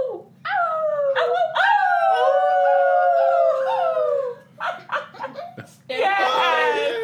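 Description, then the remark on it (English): Several people howl together like dogs, holding long wavering wails, then break off into choppy chuckles before launching into another loud burst of howling. “Okay, yeah, y'all start howling.”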